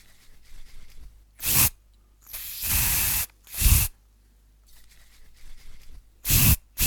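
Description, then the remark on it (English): Several loud bursts from an aerosol can of wart spray being put on warts, a short puff, a longer sustained hiss, then more brief spurts with quiet pauses between. No one speaks. “I guess I better put the spray on my warts.”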